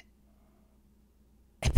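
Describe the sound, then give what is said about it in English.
After a long stretch of near silence, a voice imitates a sleeping man's irregular breathing with a sudden loud, sharp, breathy gasp that bursts in at the very end, abrupt. “And he wasn't breathing regularly. Like he'd go like.”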